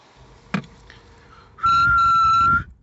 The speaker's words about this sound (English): Just had to clear up my nose whistle real quick before I called in.